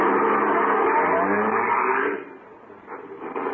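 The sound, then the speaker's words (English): A car engine, started with the starter, roars loudly and steadily for about two seconds, then abruptly drops to a quieter rumble that begins to swell again near the end. No one speaks. “The car might be hard to start again some morning.”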